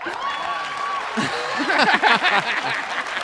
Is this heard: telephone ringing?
no